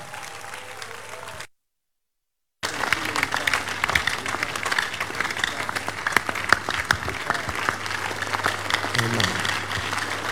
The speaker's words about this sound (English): For this amazing acts of God, please join me, rise on your feet. And let's give the God of Shiloh the biggest clap offering in adoration this morning. Come on, let's make it bigger.